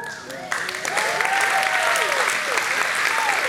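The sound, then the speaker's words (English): An audience breaks into loud, sustained applause that swells up suddenly and holds steady, with scattered whoops and crowd voices rising through the dense clapping. “You need to be hugging her. Not applauding me.”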